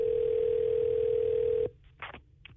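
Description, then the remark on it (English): A steady, loud telephone dial tone hums for under two seconds as a call is placed to a grand prize winner, then cuts off abruptly, followed by a few faint, brief clicks and noises on the line. “Let's get Amber on the phone here.”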